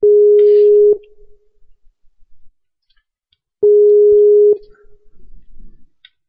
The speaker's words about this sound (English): It says ringing on the Skype.